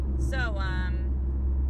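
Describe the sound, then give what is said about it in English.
A steady, loud low engine drone and road rumble from inside a car driving to New Jersey, its throaty exhaust patched but not yet replaced, fills the whole clip, with a brief voice heard over it. “they were able to like patch it, so my car's still kind of loud because they didn't replace it yet because I'm cheap.”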